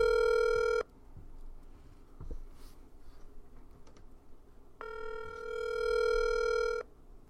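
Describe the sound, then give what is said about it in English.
An outgoing phone call ringing: two steady electronic ring tones, one brief and one about two seconds long, separated by a few seconds of quiet room noise, with no talking. “It's ringing.”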